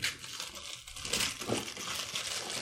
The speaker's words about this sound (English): You ripped the box. You didn't even open the box. You ripped the box.